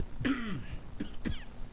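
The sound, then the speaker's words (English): A sudden cough followed by two shorter, sharper coughs about a second apart, with no talking around them. “That cough snuck up on me and took me by surprise.”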